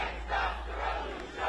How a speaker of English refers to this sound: Voices chanting her name filled the air in the early evening.